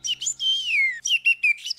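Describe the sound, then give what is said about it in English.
A single bird, Harry, chirps in a quick series of bright, warbling calls, including one long descending whistle, with no other sounds around it. “You got lost and separated from your bird friends, and now you don't know where they are.”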